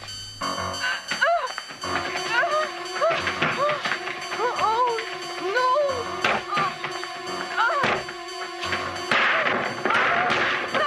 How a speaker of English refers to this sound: Breaking a lot of furniture. Yeah, that's the door that'll have to get replaced. And Jamie Lee is about to smash the glass. Or the patio door will have to be replaced.